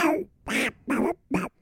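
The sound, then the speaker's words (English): A person imitates a cartoon duck voice, getting some words out, in four raspy, squawking bursts, fairly loud, with short pauses between them and no other sounds. “You say you can do Donald Duck, can you just do noises or can you actually make words?”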